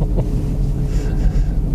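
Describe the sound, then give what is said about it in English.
A steady, low road rumble fills the inside of a car driving down the road on a bright, sunny day, a constant droning hum with a faint airy hiss over it and no one speaking. “You know, can't have a perfect broadcast studio in the car unless you're sitting still and parked away from traffic.”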